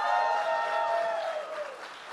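An audience breaks into steady applause for Chris Jericho, a dense wash of clapping mixed with some cheering voices, loud at first and easing off slightly over about two seconds.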